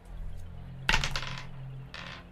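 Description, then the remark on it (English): A die clatters across a hard tabletop, a quick burst of rattling clicks that settles within half a second, followed by a fainter short rattle; it is rolled for an insight check and lands on a natural 1. “Don't worry, she rolled a nat 1 on her insight check.”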